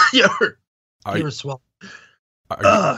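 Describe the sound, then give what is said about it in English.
Someone coughs and chokes after swallowing, in four rough, strained bursts separated by short pauses, with harsh voiced rasps and gasps between the spasms. No clear words are spoken. “Yeah, don't choke to death and have have the last thing you hear be me rambling about recasting Leia.”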